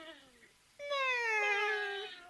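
A female cat meows twice: a soft, short mew, then a louder, drawn-out meow that rises and trails off. No one talks over it.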